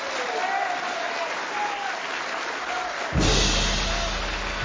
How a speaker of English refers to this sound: Well, let us hear from our minister, Minister Malcolm X. Let us bring him on with a round of applause.